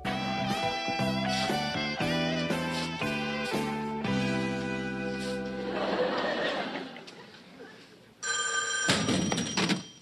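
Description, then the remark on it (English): A payphone in a hallway starts ringing near the end, a loud, bright, buzzing ring that cuts in abruptly after a stretch of rhythmic musical chords and a sustained tone fading into noise. “As Screech is pacing out in the hallway, and the payphone rings.”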